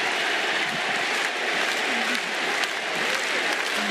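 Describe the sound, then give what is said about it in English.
A large wrestling crowd roars and claps continuously as Kota Ibushi comes out to save Kenny Omega, a dense, loud wash of cheering and applause with scattered sharp claps and shouts rising throughout, no clear voice standing out. “Listen to this crowd!”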